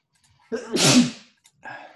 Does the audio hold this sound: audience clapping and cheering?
no